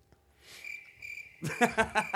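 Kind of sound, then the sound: insect, cricket chirping sound effect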